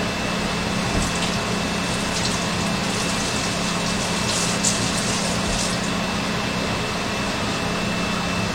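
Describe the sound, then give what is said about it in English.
A steady, unbroken spray hisses for several seconds over a low motor-like hum as a homemade bleach disinfecting solution is sprayed continuously as a mist from a simple water bottle. No voices are heard. “So here we go, 3, 2, 1, and spray the solution.”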